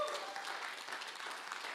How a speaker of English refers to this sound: And so let's just clap our hands and congratulate them on their anniversary.